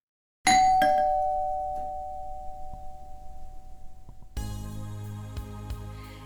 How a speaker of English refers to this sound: But at 10 after 5, the doorbell rings.